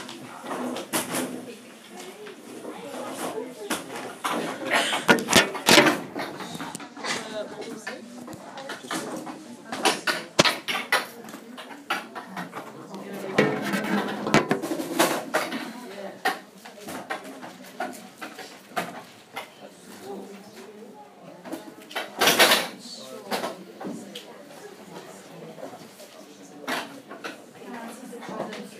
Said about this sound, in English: So just feel free, just push the chairs, it's just like you're at school. These chairs, they never break.